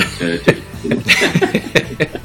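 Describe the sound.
A handful of short, sharp coughs break out among throaty, voiced sounds that come close to a chuckle, with uneven spacing and moderate loudness throughout.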